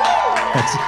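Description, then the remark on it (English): A live audience cheers and whoops in a brief, dense burst, many voices blending into a loud roar with a few higher shouts rising above it. “But as I stood there in front of the entire court, the jury, the press, the enthusiastic live crowd.”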